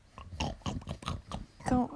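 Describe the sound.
A person imitates a pig with a string of grunting oinks, about five or six short nasal snorts in quick succession, fairly loud.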